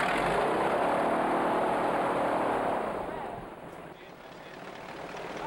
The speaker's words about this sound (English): But those wind boats are so loud, dog. They're also hella fun.